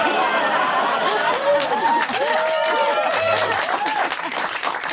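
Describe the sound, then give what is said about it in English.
A festival crowd bursts into sustained, loud applause for a surprise guest playing the scissors, dense clapping mixed with cheering voices and scattered chatter, holding steady for the full five seconds. “By the audience's reaction, I guess scissors does beat rock.”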